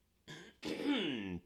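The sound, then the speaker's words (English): A single muffled cough from a little way off, a short rough burst followed by a longer voiced, throaty rasp, fairly quiet and with no talking around it. “A little cough off the mic there.”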